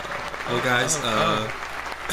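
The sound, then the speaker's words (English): A recorded applause sound effect plays: steady crowd applause fills the whole stretch, a dense patter of clapping at moderate level, with a voice or cheer rising briefly over it in the middle. “I guess you're going to listen to the next 15 minutes of clapping.”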